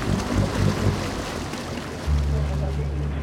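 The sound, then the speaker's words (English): A motorboat's low engine drone rumbles over wind and washing water, swelling suddenly louder and steadier partway through as the boat comes towards a swimmer and draws close. “In the distance, a boat coming towards him. It comes close.”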